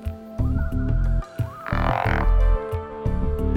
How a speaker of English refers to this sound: frogs have a special call that is uttered at intervals throughout the warmer part of the year. These calls seem to serve the purpose of advertising the presence of individual frogs to other males of the same species in the vicinity.